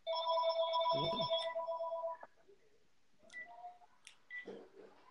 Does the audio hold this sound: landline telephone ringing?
yes